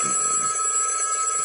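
A telephone bell rings continuously, a bright, steady electronic tone held at constant loudness for the whole moment, with no talking over it.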